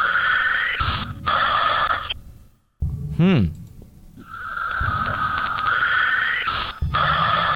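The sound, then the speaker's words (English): Strange, harsh breathing played in reverse: long raspy noisy bursts with choppy breaks, a sudden brief silence, then a short squealing whine before the breathing resumes. No one speaks. “It is breathing weird. It's almost like clippy sounding. It almost sounds electronic to me.”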